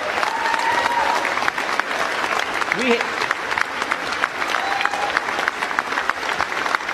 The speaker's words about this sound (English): Even McCarthy is standing up and cheering.